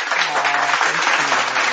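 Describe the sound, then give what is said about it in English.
Steady, dense clapping like a round of applause fills the whole moment at a fairly loud, even level, with a faint low hum running underneath. “And I just want to give you a round of applause for you being with me this evening and with our listeners.”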